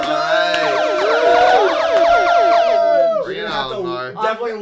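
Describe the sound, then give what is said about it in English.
A loud, layered siren sound effect with rising and falling wails that overlap for about three seconds, then cuts off as a voice begins talking. “I'm getting like a siren sound.”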